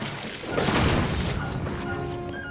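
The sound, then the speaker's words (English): A loud, booming video game explosion from a bomb arrow hitting an enemy in a cave bursts out near the start, followed by a crackling, rumbling tail that lingers over faint background game sounds. “And wow, even the bomb arrows will stunify it, but they won't even do as much damage as you would expect.”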